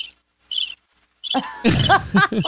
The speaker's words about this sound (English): Crickets, Marci. Oh, crickets.